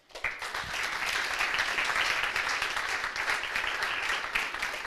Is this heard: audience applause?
yes